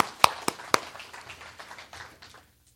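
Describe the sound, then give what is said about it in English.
Brief audience applause for the foster families in the room: three sharp, loud claps open it, followed by a softer scattered patter of clapping that thins out and stops after about two seconds. No one speaks. “Yeah, we'll applaud that.”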